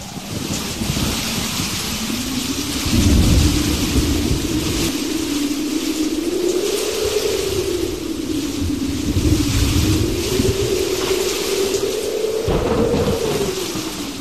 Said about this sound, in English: Holy mackerel. Will you listen to that rain, darling? It's very pretty, dear. The rain plays a little sleep song on our roof at night, and I love the rain.